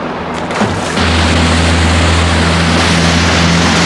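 A motor cruiser's engine drones loud over rushing water on a fjord, surging up within the first second and then holding a steady, heavy throb with no voices, as the cruiser turns a corner of the fjord and heads straight for a small boat.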